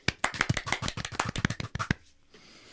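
A quiet golf clap: about a dozen soft, light claps at a steady, brisk pace for roughly two seconds, then stopping into near silence. No voices.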